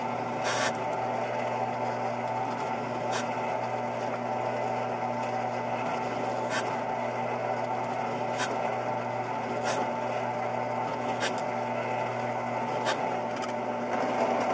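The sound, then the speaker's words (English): A spot weld cutter drills into a circuit board: a steady, humming motor whine runs throughout, broken by about eight brief, sharp scraping bursts at irregular intervals. No one speaks. “What you do is you take the spot weld cutter, put it on the PC board, and then you just drill out the little islands everywhere you need them.”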